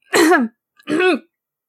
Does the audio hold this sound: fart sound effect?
no